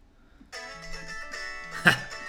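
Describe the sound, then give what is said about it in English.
A phone ringtone from an incoming call from Blake suddenly starts up, a bright electronic melody of steady, layered tones that plays on for a couple of seconds at moderate volume, with a brief louder burst near the end. “Just got a phone call.”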